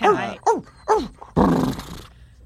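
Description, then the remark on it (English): A person imitates a dog barking: three quick, yelping barks in a row, then a longer, rougher growling bark, loud with no other sounds. “But the dog also realizes that there's no longer a weight over it, so you definitely pulled it off, but then it kind of realizes there's no longer that weight, and it starts barking at you a lot.”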